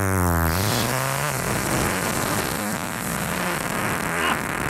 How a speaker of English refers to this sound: Christ. That's such a good one. Woo! It's like if a tornado was a fart.